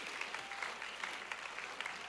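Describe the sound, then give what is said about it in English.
Sparse clapping from a small number of people, irregular individual claps forming a light, scattered patter at moderate volume, with no voices. “A couple of you just clapping because you know you're supposed to.”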